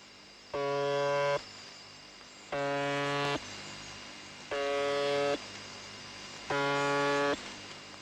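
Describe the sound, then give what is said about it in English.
A harsh, droning buzz sounds in four evenly spaced bursts of about a second each, over a constant hiss and hum of shortwave radio static, like a repeating buzzer signal. “There are a few strange stations, I must admit, like the buzzer on 4625 kHz.”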